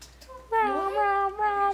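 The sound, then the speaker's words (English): A cat lets out one drawn-out meow with a rising then wavering pitch. It briefly dips near the end before trailing off. No one talks over it. “Yeah, judge him, cat.”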